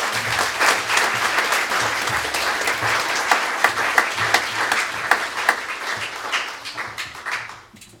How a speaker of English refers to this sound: Thank you very much. A round of applause.